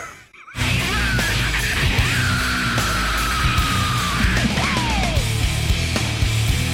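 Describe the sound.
An imitation of a rock singer's yell after a song refrain: a long, loud yelled "woo" held for a couple of seconds over a dense, roaring wall of noise, followed by a shorter cry that slides downward in pitch.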